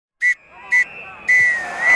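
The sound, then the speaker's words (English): A referee's whistle blows the classic full-time pattern to end the match: two short, sharp blasts followed by one long, shrill blast, loud with a faint ambient hum beneath. “The referee blows his whistle, bringing an end to the proceedings here in this festival of podcasting.”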